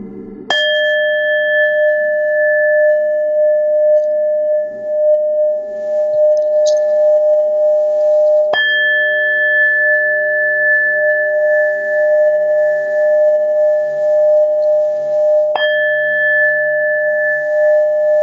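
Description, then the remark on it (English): A meditation bowl is struck three times during a root chakra meditation, several seconds apart, each strike ringing out in a long, steady, shimmering tone with bright overtones that sustains until the next chime. “And now with each chime of the ball, this root chakra opens even further.”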